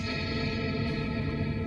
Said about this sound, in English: Cathedral. That is creepy as shit. I don't like the echo.